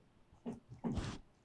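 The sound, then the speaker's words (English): A male dog's tail wags against a microphone held up to him: two soft, rustling brushes, a short one followed by a longer, louder sweep, with no voices. “Oh, I hear it. It's a tail.”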